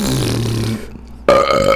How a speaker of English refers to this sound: What about that? Burps too.